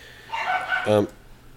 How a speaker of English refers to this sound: And dogs trying to kill each other outside the door.